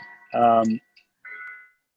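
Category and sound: ambience, bell tower bells ringing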